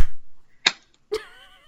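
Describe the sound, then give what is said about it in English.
Sharp hand claps made after a 3, 2, 1 countdown to line up recordings, two crisp smacks about half a second apart, the second leaving a brief ringing tone that fades out. No one speaks. “Let's do 3, 2, 1 clap.”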